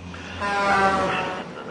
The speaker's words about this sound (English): There's a truck. Here it comes.